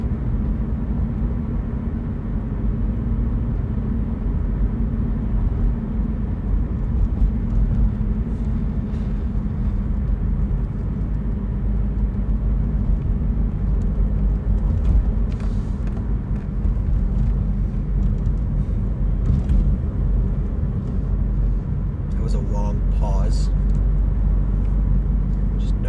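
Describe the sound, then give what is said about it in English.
Loud, steady low rumble of car road noise fills the whole recording, a constant droning roar from inside a moving vehicle, with a faint voice barely audible beneath it. “car is probably being picked up in the mic. So you guys can probably barely hear me.”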